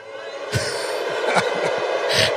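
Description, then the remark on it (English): A large crowd at a rally boos the word "caravan" in a steady, sustained roar, with scattered thumps and bursts of noise rising out of the dense wash of many voices. “I mean, and they boo the word caravan.”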